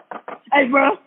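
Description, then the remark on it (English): A voice imitates someone hitting a door with two quick knocks, then lets out a longer, loud drawn-out vocal sound right after. “Then he comes over to my door, and this is all he do. He just hits, that's all you hear.”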